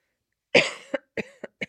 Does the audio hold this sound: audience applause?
no